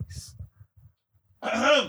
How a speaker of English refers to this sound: Had to clear my throat.